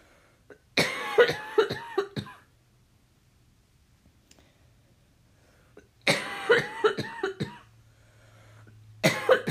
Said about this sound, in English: So if you, excuse me, being authentic is what causes me to cough. That is another trigger of mine.